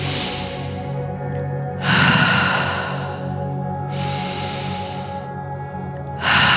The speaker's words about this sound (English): And now moving into a slightly more forceful, continual, conscious breath.